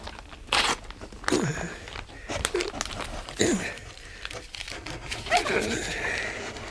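Crinkling, crunching and tearing of paper and cardboard as a physics professor takes apart a firework rocket in his small laboratory, with sharp rustles and snaps coming in irregular bursts and a few faint vocal sounds between them.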